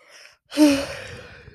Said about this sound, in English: I promise you guys are not boring, I'm just yawning.